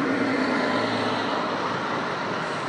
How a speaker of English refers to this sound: Bus is passing. 46A going to Dunleary.